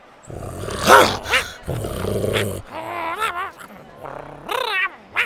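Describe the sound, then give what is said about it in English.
Two loud, rough growls rumble up close, followed by wavering, whiny vocal sounds. A human voice seems to be imitating an agitated creature: Buck, growling and whacking away the Triceratopses fighting over food so they take turns. “He kept growling and whacking the others away while one took a turn.”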